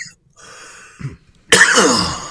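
A single loud, close cough bursts out after a short quiet stretch with a soft low thump, its harsh, raspy noise lingering for nearly a second. No one speaks.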